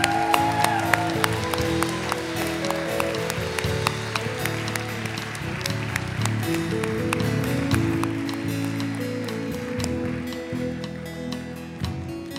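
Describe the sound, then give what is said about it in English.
An audience applauds and cheers on people coming down to the front this morning, dense clapping layered over a sustained low murmur of voices, holding at an even, fairly loud level for about twelve seconds. “Can we just cheer them on as they come down here this morning?”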